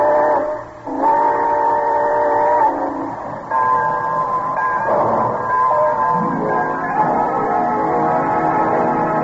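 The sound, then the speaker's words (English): A steam train whistle for The Railroad Hour's summer show train blows in long, sustained harmonic tones, loud, sliding slightly in pitch as the train pulls out, with a low rumbling underneath and no one speaking. “All aboard! Well, it looks as though we're ready to pull out.”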